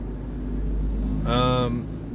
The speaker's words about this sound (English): I'm very curious to listen to the playback of this too, and hearing like the trucks rolling by and like turn signals and just the more raw aspects of this.